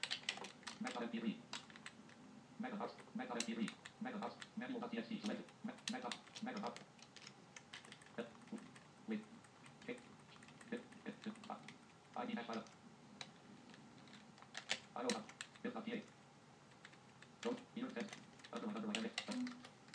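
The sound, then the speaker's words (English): Clattery typing on an old computer keyboard: rapid, irregular bursts of key clicks with short pauses between runs, continuing steadily for the whole stretch. “Yeah, it is the same computer that I, or the same keyboard that I used.”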